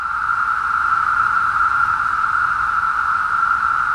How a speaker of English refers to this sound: Cicadas make that sound by rubbing their wings together in giant choirs that can hit 90 decibels, or about the loudness of a power lawnmower. It's a sound that has been described as the caterwauling of a million cats